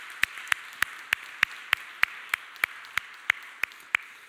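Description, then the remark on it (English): A church audience applauds the finance team in steady unison, about thirteen sharp, evenly spaced claps roughly three per second over a constant background hiss, with no talking. “And should we give the finance team a big round of applause?”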